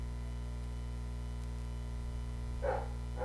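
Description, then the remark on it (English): Two short barks from dogs, coming near the end over a constant low electrical hum, with quiet stretches before them. “Is there any way we can, like, mute the dogs?”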